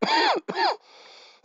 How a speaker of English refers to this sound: Coughing on COVID. Ha! Itchy esophagus.